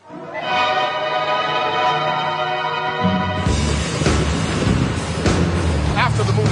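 A loud air raid siren holds a steady, droning wail, then a heavy rumbling, roaring noise swells in underneath it halfway through, the whole thing continuous.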